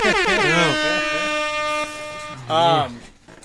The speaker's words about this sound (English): Air horns.